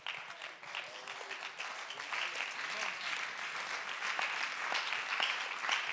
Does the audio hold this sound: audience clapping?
yes